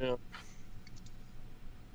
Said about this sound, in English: There it is. My God, that's so cold! Yeah, what's up, man? Is that going to be like your thing? You just crack open a cold one on mic every week?